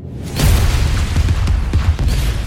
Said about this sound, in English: Shout out Michael Bay. Let's go. Explosions. All right, more explosions.